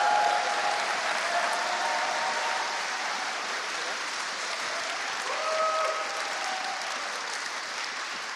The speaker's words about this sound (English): I'd love it if you'd give him a massive round of applause as he comes to share his story. Are we up for that? Okay. Let's give it up.